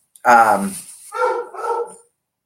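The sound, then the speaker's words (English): A dog barks three times, a long drawn-out, slightly howling bark followed by two shorter, quicker ones, with no one talking; the bored dog cannot get up easily and barks until its owner shows up. “And he doesn't know where I am. And he can't get up that easily. So he barks until I show up.”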